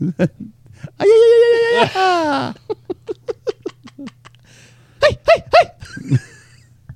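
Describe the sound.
A man lets out a loud, sustained yell that drops in pitch, then breaks into a quick series of rhythmic whooping bursts, like a war cry, followed by a few more sharp shouts.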